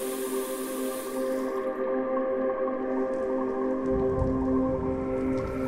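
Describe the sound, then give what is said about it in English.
Several showers, each turned on one by one, run steadily, water spraying down in a constant hiss with a faint, even hum beneath it. No voices, just the continuous rush of falling water throughout. “The showers had been on for a while.”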